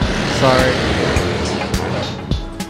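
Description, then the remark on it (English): A loud motorcycle roars by, its engine a dense, steady rumble with a brief rising whine early on, filling the whole moment with little change in volume. “Motorcycle being loud.”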